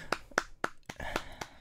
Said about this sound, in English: I don't know if you deserve a clap.